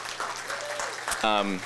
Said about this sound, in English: I'll give you my my applause.